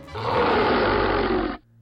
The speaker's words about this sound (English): Something growled. Kyle turned, saw the wolfman crouched at the end of the car. The monster's lips pulled back in a snarl, tongue sagging outside of its mouth.